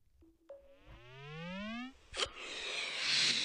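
A cartoon balloon-inflating effect: a steady, rising whistle-like tone climbs in pitch for about two seconds as the balloon blows up, then a sharp pop gives way to a loud, sustained hiss of rushing air as it deflates.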